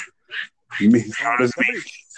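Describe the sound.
A dog gives two short, breathy huffs, then a longer run of strained, whining whimpers with a wavering, voice-like tone.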